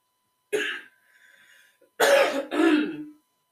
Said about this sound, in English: So, and it's pissing me off right now because now I'm coughing.